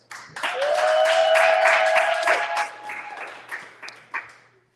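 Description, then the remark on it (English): At a live show, a crowd applauds the show's sound engineer with dense, steady clapping mixed with cheers and a sustained whistle, then the clapping thins into scattered claps before fading out. “So give a round of applause for my man, D Hero.”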